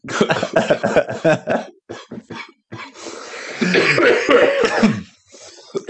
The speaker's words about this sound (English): Man, it coughed like this since back in the day, yo.